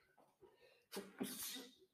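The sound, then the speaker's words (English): One loud sneeze: a quick inhale, then a sharp explosive burst that trails off into a breathy hiss, with faint murmuring voices just before it. “I gotta sneeze.”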